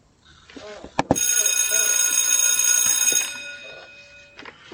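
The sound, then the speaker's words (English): Two sharp clicks, then a loud, shrill electric bell rings continuously for about two seconds before cutting off. Faint voices murmur underneath and continue after the ringing stops. “That goes the bell.”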